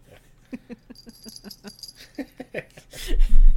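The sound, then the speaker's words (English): The collar bell of Pickles, a dog nicknamed Jingly Bell, jingles in a quick, uneven series of small bright rings and rattles as he jumps up, ending with a louder scuffling burst. No one speaks. “Got to reach over and jingle his bell if you're going to call it the Jingly Bell.”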